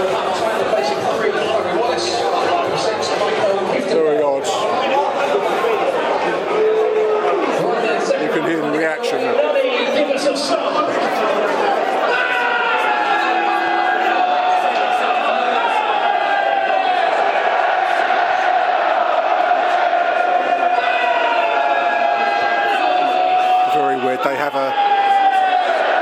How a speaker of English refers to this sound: Is a club-sponsored chant. A big scream of a fan calling out Red Army, which the crowd responds to.